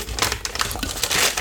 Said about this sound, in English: I'm gonna make the parchment paper a little bigger because I'm gonna do the drizzle on here and I don't want it to get on the pan because that would be a mess to clean up.